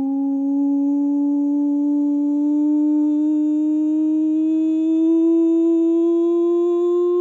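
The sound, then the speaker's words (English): A siren sound effect: one loud, steady, whistle-like tone that glides slowly upward in pitch for about seven seconds, with no one talking. “Right, that is the nonsense siren.”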